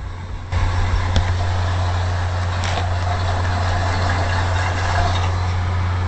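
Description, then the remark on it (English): A car engine kicks in abruptly after a brief silence, then runs with a steady, loud low rumble and hum for several seconds without dying away. “The engine went dead. I have no power.”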